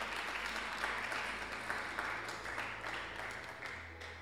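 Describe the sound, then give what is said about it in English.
An audience at a sermon applauds steadily for a few seconds, a dense wash of many hands clapping at once, fairly loud and sustained over a low background hum, with no one speaking. “You could clap for that.”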